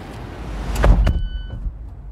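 A rental car that looks like a spaceship stirs against a low rumble: a short whooshing clunk like a door or power window moving, followed by a thin, steady high-pitched electronic whine. No one speaks.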